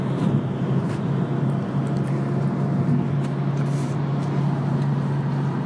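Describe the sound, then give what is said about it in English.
Steady, low rumbling drone of a car interior while driving, with an even engine hum and road noise holding constant throughout, no voices. “Driving the car, right?”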